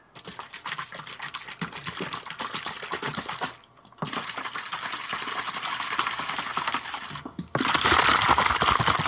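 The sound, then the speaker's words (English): A water bottle with BCAAs added to the water is shaken hard in rapid bursts, liquid sloshing and rattling in a dense, steady rhythm, with a brief pause before the shaking resumes and grows louder toward the end. “So I'm shaking up the water.”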